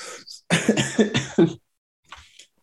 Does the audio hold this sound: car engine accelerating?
no